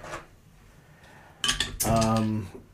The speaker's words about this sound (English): Well, let's open that beer. There's the opener.